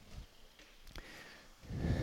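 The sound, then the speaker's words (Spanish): Quiet, breathy panting of someone cycling up a fairly steep hill in Madrid: a short puff of breath, then a longer, louder exhale near the end, with a faint rushing low rumble in between and no talking. “Estoy subiendo una cuesta, bastante empinada. Por eso estoy jadeando un poquito.”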